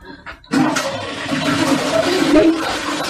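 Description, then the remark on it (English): A toilet flushes: after a brief quiet moment, a sudden loud rush of swirling water starts and keeps roaring steadily to the end, with no voices. “And naturally flushed.”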